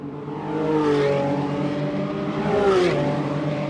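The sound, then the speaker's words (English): A Revuelto supercar with a 6.5-litre V12 roars past in a pit lane, heard from the pit wall, its loud, rich engine note climbing as it accelerates, then sweeping downward as it passes. No one speaks. “Hopefully that came through loud and clear, the sound of the Revuelto's modest 6.5-litre V12.”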